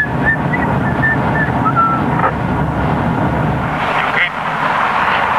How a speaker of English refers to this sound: As the Santa Barbara Sheriff's motorcade rode along the freeway, Jackson whistled casually in the back seat.